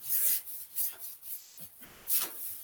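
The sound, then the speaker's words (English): A paintbrush swishes back and forth in several quick, bristly strokes, applying paint to a narrow area of a window casing, each a soft, hissing scrape rising and fading in an uneven rhythm, with no talking. “So we will brush like this.”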